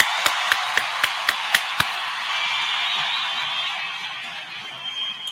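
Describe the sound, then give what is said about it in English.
About seven sharp claps in a quick, even rhythm, then they stop, leaving a steady hiss that carries on alone for several seconds. No one speaks. “Also, make more room for more claps for our second sponsor, which is 583 Expressions.”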